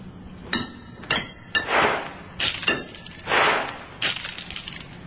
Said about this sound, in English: Dr. Humer hurled the coins around the chamber floor, the last few far over to the other side.